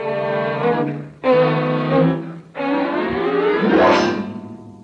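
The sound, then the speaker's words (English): A car engine drives and accelerates loudly, its whine dropping briefly twice as if shifting gears, then climbing steadily in pitch. No one speaks. “You drive, fella.”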